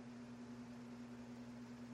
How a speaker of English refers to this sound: I brought it into the room, and now I'm putting my marijuana in the microwave, and I'm cooking it. I'm cooking the marijuana in the microwave. It's going to be nice and toasty.